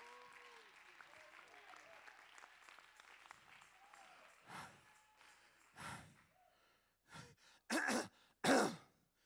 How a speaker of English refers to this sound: He brought us through it, and you need to clap your hands and celebrate, come on, about the bringing through power of our God. I can't hear you. Clap your hands and shout to God.